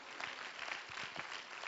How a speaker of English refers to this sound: Oh, clap your hands and let's praise the Lord.